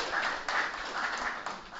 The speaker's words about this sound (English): Everybody clap at Rob.